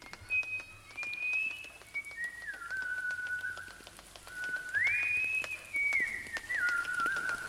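A person whistles a slow, gliding melody in two phrases outdoors, moments before it began to drizzle. The notes slide between pitches, fairly quiet, with faint scattered ticking in the background and no talking.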